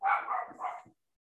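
animal, dog barking

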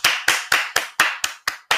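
human body sound, hands clapping

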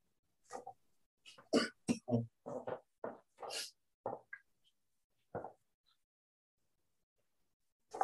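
human body sound, cough

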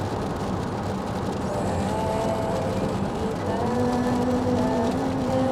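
vehicle, car driving

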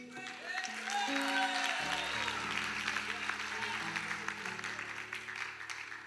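crowd, audience cheering and applauding

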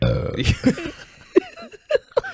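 human body sound, burp into the microphone

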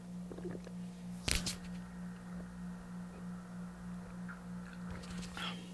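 human body sound, speaker drinking water

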